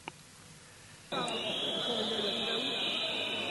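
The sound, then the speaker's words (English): A protest crowd in France erupts into loud, shrill whistling about a second in, as a regional prefect walks in with riot police. The whistling is a piercing, high-pitched blast that holds steady to the end, with a murmur of voices beneath it. “Here's a lot of whistling.”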